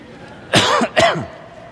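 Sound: cough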